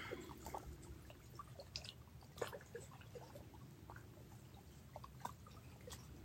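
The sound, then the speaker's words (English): Melting icicles drip and tick irregularly at Kichigami under the setting sun, scattered droplets falling at uneven intervals over a soft, steady low rumble of moving water, all quiet with no voices. “Let's breathe in the serenity of the melting ice.”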